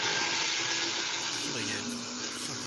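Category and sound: household object, garbage disposal running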